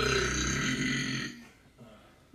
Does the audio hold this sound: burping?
yes